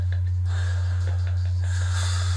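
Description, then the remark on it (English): A man breathes heavily and roughly on a music track from an album, with several breaths and snort-like inhales in quick succession, over a steady low droning bass tone. “Why is this nigga breathing so hard?”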